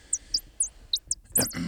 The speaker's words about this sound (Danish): Men den lyder jo dejligt, den her fugl. Ja, det gør den. Altså, man kunne måske argumentere for, at det var flere fugle.